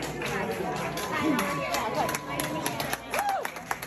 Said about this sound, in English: Maskers here who are applauding.